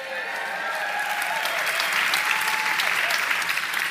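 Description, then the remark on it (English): Loud, sustained applause from an audience, a dense wash of clapping that holds steady and swells slightly toward the end, with faint voices mixed into the noise. “In my notes here, it says pause for raucous applause. So you guys are doing it.”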